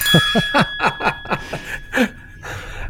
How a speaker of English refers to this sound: Oh, my goodness. I'm ringing the bell right now. Here we go.